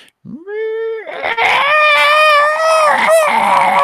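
A voice imitates seven startled creatures screeching: a short rising shriek, then a loud, harsh, sustained screech that wavers for several seconds, uninterrupted, with no talking.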